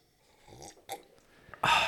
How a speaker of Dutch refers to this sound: Ik moet even een slokje thee pakken. Ik moet heel even, even ja, die kamille thee even, weer. Even tot rust komen.